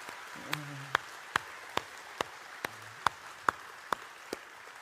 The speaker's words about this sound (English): That's our graduates. Would you give a round of applause for those 19 graduates?